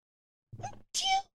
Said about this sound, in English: Uh-oh, I have to sneeze.